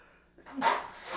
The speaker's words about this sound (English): Oh, I'm going to sneeze.